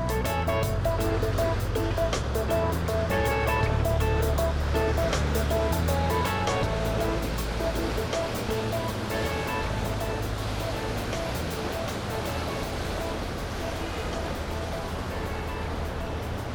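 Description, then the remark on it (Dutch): A large container ship named Nadorias, flying a red-white-blue flag, passes in sunny weather; its deep engine drone rumbles steadily while waves wash and splash continuously, a loud, constant maritime roar with no voices. “boot met containers.”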